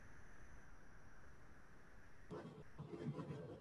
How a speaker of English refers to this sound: About 30% of train. You can still hear your train in the background.